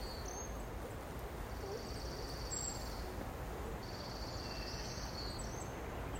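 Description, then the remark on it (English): Spring birds call faintly in early spring in Seattle, thin high tones drifting in and out over a constant rushing outdoor background, with sea lions faint in the background and no voices present. “The sounds of spring as the birds are calling, and I don't know if you heard in the faint background the sea lions.”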